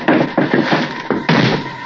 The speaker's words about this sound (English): Slammed the door shut, got in alongside of me.